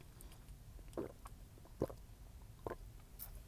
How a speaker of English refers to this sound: Yes, I am. Just sipping on it. I got to hydrate my organs.